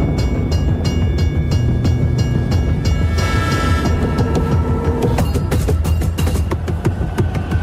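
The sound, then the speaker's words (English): A train rumbles past in a Lincoln Navigator commercial, its steady low roar mixed with rhythmic clacking of wheels over rail joints and sharp metallic clicks, loud and continuous throughout with no voices. “In a Lincoln Navigator commercial, McConaughey taps out a rhythm on the steering wheel while a train passes by.”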